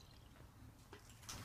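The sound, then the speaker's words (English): A thin, steady trickle of liquid pouring, soft, with a faint watery hiss and a few small splashy ticks near the end. No one speaks. “I just want to know why you open your mouth this much. Yeah. For a pour this skinny.”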